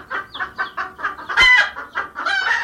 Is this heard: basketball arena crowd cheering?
no